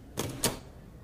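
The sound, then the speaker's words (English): A door closes: a quick latch click followed a moment later by a short, solid thud, then quiet room tone with a faint tap at the end. No one speaks. “After the door closed, I lay there and just lay there.”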